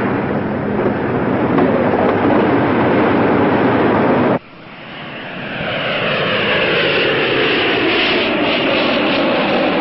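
A loud, steady roar of an airplane passing overhead a residential area in Atlanta, cutting off abruptly partway and then building back up as the engine noise swells again, with no voices.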